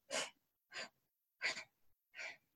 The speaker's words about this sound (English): And this time, what we're going to do is you're going to inhale through the nose in 4 equal parts, like sniffs, like this. And then exhale in 4 equal parts, sniffs.